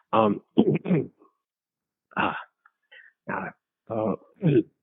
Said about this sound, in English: there's been some smoke in the air lately. Not very smoky. Wow. The air doesn't look very smoky, but I'm getting these coughs.